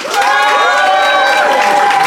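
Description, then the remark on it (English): The Phoenix audience bursts into loud, sustained applause mixed with whoops and cheering voices, voting by applause that Ivo and Fanshawe's side, the stingy flatmate, is in the right. The clapping is a dense, even roar lasting the whole stretch, with no speech over it. “But if you think Ivo and Fanshawe indeed, and therefore the stingy flatmate is in the right, applaud now.”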